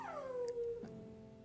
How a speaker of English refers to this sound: This dog. I just gotta stare at him and he'll stop.